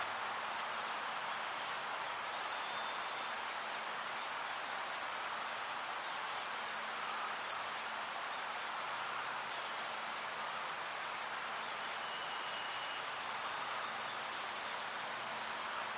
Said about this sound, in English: And so just for reference, I'll go ahead and play chestnut-backed chickadee calls here.